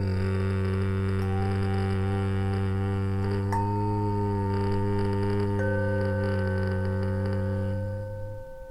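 A person hums on the exhale during a breathing exercise: a long, steady low hum held on one pitch for about eight seconds, rich in overtones, with faint higher ringing tones entering partway through before the hum fades out.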